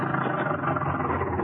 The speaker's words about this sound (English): There's his car coming across the field.